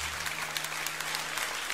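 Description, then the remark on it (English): An audience claps in praise, a dense, steady wash of many hands with sharp overlapping clicks throughout, joined by a faint low sustained hum underneath. “Give the Lord a great hand clap of praise this morning.”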